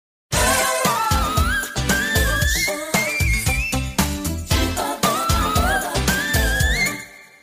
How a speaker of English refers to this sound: again you get the whistle register near the end, but now it's the best and brightest hook in the whole song.